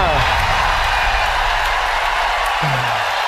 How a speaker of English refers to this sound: San Marino, hear that applause.